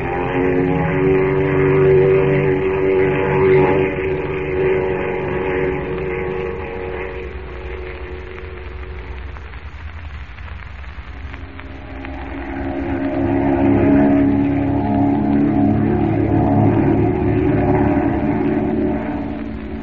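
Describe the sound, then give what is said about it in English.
A steady propeller-engine drone from a plane in flight hums continuously, its pitch shifting slightly as it dips quieter midway, then swells back to full strength. No voices are heard. “That we're safe and comfortable in the plane, Miss Chase.”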